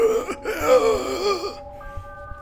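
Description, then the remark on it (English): A voice imitates a creature's eerie gasping, a strained, wavering moan that rises and dips for about a second and a half before trailing off into faint, thin tones. “It's bones clicking on the hardwood floor as it's trying to get back upright, making those weird gasping noises still.”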